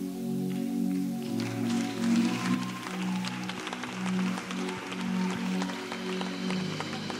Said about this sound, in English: Who are you clapping for?